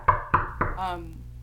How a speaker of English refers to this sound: And I knock on the door gently at first.